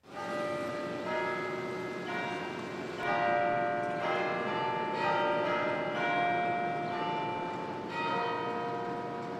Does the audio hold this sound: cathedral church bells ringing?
yes